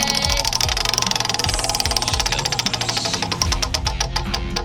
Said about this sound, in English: I'm going to go ahead and spin that wheel. Spin it.